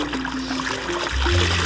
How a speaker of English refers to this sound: it's all mesh. So the water just kind of drips out of it, especially when it's in the spinner. It kind of has ability to really fling out the sides,